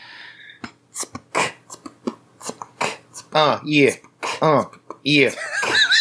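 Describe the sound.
Rapid beatboxing vocal percussion as backing for a rap about a GoFundMe: crisp mouth clicks and hissing snare-like bursts in a steady rhythm, fairly loud, later mixed with voiced, humming bass tones.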